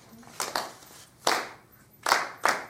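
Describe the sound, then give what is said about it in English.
Five sharp hand claps tap out the rhythm of the words "pig, cow, pony, duck" in an uneven pattern, a quick pair, a single clap, then another quick pair, with quiet pauses between and no one speaking. “Can you let your hands say it and not your mouth?”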